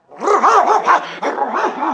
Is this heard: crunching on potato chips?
no